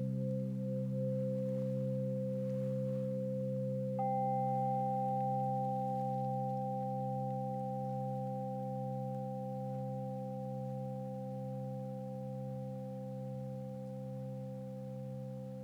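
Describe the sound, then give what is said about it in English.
A meditation bell rings out as a steady, pure hum, signaling the end of a meditation. A brighter higher tone joins a few seconds in, and both sustain evenly, fading only slightly, with no talking. “When you hear the next bell, that will signal the end of our meditation.”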